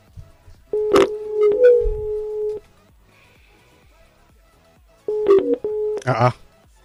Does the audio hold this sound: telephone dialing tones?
yes